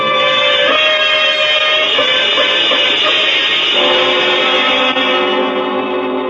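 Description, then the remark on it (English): A loud, steady electric hum drones from downstairs in a house without a break, thick with buzzing overtones and wavering slightly in pitch, with no voices over it. “between his wife's terror and the electric humming from below, Mr. Morris felt a great fear”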